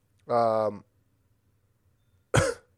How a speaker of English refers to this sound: sorry, I'm coughing again.